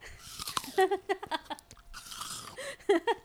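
Crisp crunching as someone bites into an apple, followed by a run of wet, rhythmic chewing with short pauses, then another crunchy bite and more chewing.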